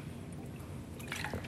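A quiet liquid sound with small wet drips and a brief slurp near the end, as someone takes a quick sip of water, with no talking.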